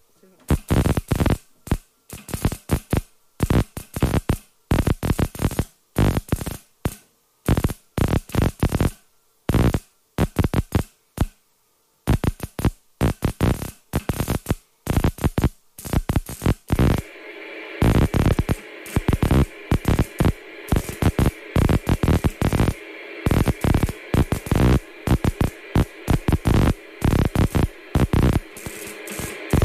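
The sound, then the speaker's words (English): Loud, buzzy Morse code signal: bursts switch on and off in an irregular rhythm of short and long pulses. Partway through, a steady hiss rises underneath and continues behind the pulses. “That's the Morse code, isn't it? That's in the background, yeah.”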